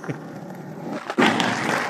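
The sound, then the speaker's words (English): A skateboard does a straight grind on both trucks along a rail: a harsh, continuous metallic scraping that swells suddenly louder partway through and keeps rasping steadily, with no voices over it. “No, that's definitely two trucks. I think it's just a straight up grind.”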